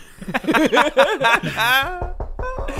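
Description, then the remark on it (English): A voice makes excited, sing-song sounds, then a quick series of about five moderately loud knocks on a house door follows, as a delivery driver arrives with a Christmas gift. “Oh, who's at the door?”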